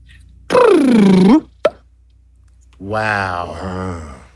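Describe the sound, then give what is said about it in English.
A humpback whale whoop: a loud, harmonic tone that sags low and then sweeps upward, followed by a brief pop and, after a pause, a longer buzzy, voice-like tonal sound. “So that is a sound that humpback whales worldwide all produce.”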